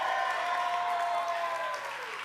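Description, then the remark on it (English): A crowd cheers and claps in a steady, loud roar of voices, with a few sustained whoops riding on top, tapering off slightly near the end. “It was all a setup so that you guys would cheer for me.”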